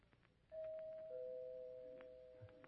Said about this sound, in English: I know who it is because she rings the doorbell instead of knocking.